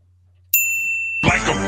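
A single bright game-show ding, one of the buzzer options being tried out, strikes sharply and rings with a steady high tone for under a second, then gives way to a loud, dense burst of sound.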